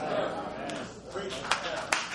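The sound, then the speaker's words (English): A few sharp, scattered hand claps ring out during a sermon, three quick bright smacks spaced irregularly, over a steady murmur of background voices. “Oh, the hand claps.”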